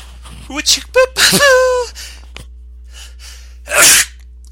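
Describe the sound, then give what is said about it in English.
A few strained, gasping breaths build up, then after a short pause comes one loud sneeze with a sharp burst of air near the end. “hang on one second, I'm going to sneeze”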